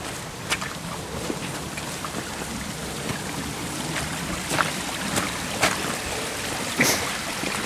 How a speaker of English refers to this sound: Just coming to a little stream.